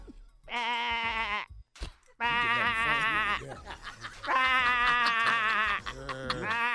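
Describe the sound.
A human voice imitates a sheep, giving three long, wavering bleats one after another, loud, with short breaks between them.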